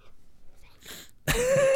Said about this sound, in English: Sorry, I just yawned like real hardcore, man. That was bad.